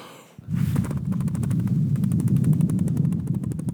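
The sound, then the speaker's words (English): A person imitates a helicopter with their mouth, making a steady stream of rapid, breathy chopping pulses that start abruptly and stay loud for a few seconds, with no talking. “Here's my impression of a helicopter.”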